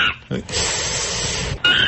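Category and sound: vocal imitation, person imitating monkey noises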